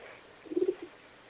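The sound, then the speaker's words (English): A soft, low owl hoot sounds once, a brief warbling call followed by a quieter trailing note, with no voices over it. “I swear that's a fucking owl.”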